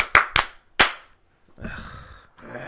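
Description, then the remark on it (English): Three sharp, loud hand claps in quick, slightly uneven succession, followed by a softer stretch of murmuring noise. “We need to stop the clapping.”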